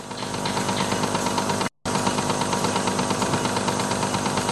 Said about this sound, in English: I love this though. You can play play a random sound. Here's a Stone Age drill.